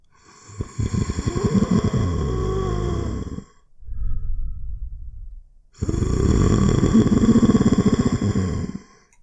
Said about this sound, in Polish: Gdy obydwie stoicie i patrzycie w to miejsce, widzicie Jonasa, słyszycie jego chrapliwy oddech.